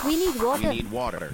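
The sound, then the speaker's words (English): Steady, hissing rush of a flowing stream runs continuously underneath, with a voice's tones sliding above it throughout. “Streams, I would say, we can hear one in the background.”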